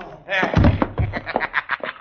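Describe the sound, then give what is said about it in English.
Two heavy thwacks land about half a second apart, two punches by Cisco to a man's jaw in a fistfight, while a man keeps talking over and around them. “And now two times in the jaw. There is one, and there is the other.”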